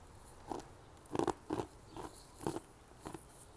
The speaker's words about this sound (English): I'm sorry, I'm chewing ice, but it was interesting.